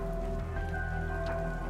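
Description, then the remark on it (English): Light rain patters steadily onto wet ground and puddles on cobblestone streets, a soft continuous drizzle with scattered drips over a low, steady background rumble as carriages roll through the streets. No voices. “A light patter of rain dribbles on puddles as carriages continue to roll through the streets.”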